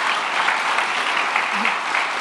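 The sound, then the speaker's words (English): An applause sound effect: a steady wash of many hands clapping in a dense, even roar with no pauses and no voices standing out, holding at a constant loudness throughout. “So we're not a real clapping crowd, but if we were, that they would clap there.”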